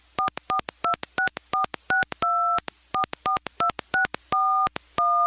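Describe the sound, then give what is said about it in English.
A rapid run of touch-tone keypad beeps, well over a dozen presses in quick bursts with a few longer held tones, clear with no voices. “For help, let's make a phone call.”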